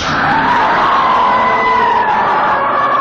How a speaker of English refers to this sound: Little Gamera yell for that one. Love it.